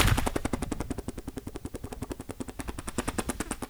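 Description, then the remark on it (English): A voice mimics a helicopter with a rapid, steady train of chopping, breathy pulses, about eight to nine per second, held evenly for several seconds with no talking over it. “Helicopter. Check this out.”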